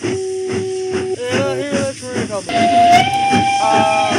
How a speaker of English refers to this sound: You hear that train, Maurice? Yes. It's because I added it in post.